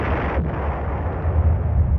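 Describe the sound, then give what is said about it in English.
A deep, rumbling volcanic explosion of Mount Pelee roars continuously, heavy low-end booms churning under a broad wash of noise, sounding large, with no voices present. “It started off as a rather moderate explosion.”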